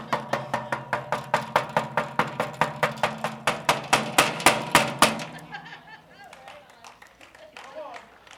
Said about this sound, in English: Jesus told the story of the woman that went before the unrighteous judge, and she kept knocking. Tell me when it gets irritating.